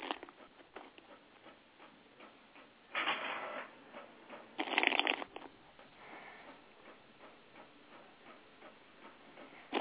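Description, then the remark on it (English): Tarot cards being shuffled for a reading: a steady soft papery ticking and flicking, broken by two louder riffling bursts in quick succession, with no one speaking. “while I shuffle.”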